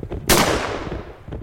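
gunshot

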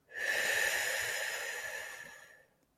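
paced breathing

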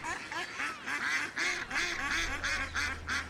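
ducks quacking

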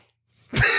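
sneeze in the background

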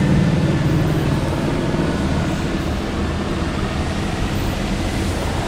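helicopter flying overhead

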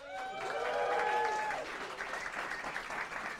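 round of applause

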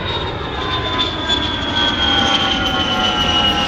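airplane engine

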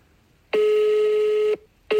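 telephone dialing tones

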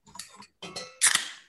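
beer glasses clinking

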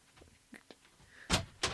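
door being opened

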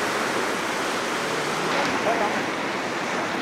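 rushing river water

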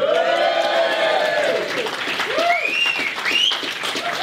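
audience cheering

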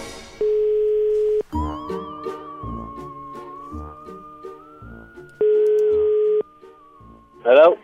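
telephone call ringing out

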